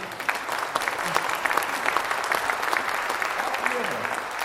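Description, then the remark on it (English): Steady applause from an audience celebrating that three people accepted Jesus Christ, a dense wash of many hands clapping at an even loudness throughout, with faint murmuring voices mixed in underneath. “And all three of them, yeah, you can clap for it.”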